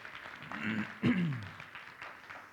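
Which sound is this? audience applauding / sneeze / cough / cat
audience applauding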